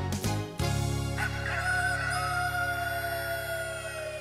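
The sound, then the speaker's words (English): A rooster crows in one long, loud, drawn-out call that carries across several seconds, with no voices. “Ever since that rooster came into our yard.”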